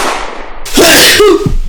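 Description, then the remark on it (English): A single loud sneeze bursts out suddenly, a harsh breathy blast with a brief voiced edge, following a moment of soft hiss. “Bless you.”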